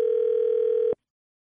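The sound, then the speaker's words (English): A single steady electronic telephone tone rings out clearly for about a second, then cuts off abruptly into silence, like a line ringing before someone at a bookstore picks up, during a prank phone call. “It's another phone tap.”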